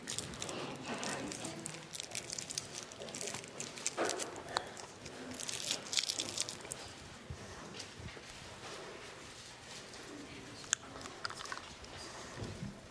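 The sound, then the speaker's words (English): Someone unwraps a cough drop: a run of irregular, crisp crinkling and crackling from the wrapper, with small sharp snaps now and then, fairly quiet and continuing for several seconds without talk. “Could somebody look up Acts 26:20 while I find a cough drop?”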